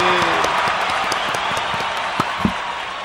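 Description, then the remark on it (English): A canned applause sound effect played from a button: dense, steady crowd clapping with a few sharper individual claps popping out, sustained at an even, fairly loud level throughout. “Nice applause there. Oh, here. Yay. I have a little button here I can play.”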